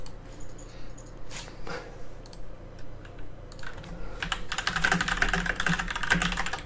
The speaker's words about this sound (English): Keyboard and I'm hearing a mouse.